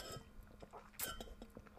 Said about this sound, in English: ASMR, drinking water.